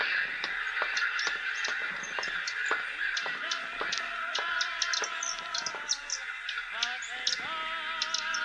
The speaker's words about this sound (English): The sound of many bodies pressed together, shuffling on the sills. Now and again, a thud, a crash, and some birds dived and fell.